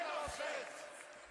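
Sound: audience booing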